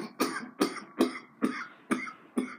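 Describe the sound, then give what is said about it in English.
A rapid series of six harsh, chesty coughs in a steady rhythm, each a sharp burst trailing into a raspy tail, fairly loud with no talking. “Cough more, you get higher, more higher.”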